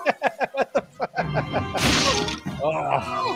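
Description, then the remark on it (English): A sudden, bright shattering crash, like glass breaking apart, bursts out after a few rhythmic beats, with a busy rumbling background and voices around it. “Oh, shatters it.”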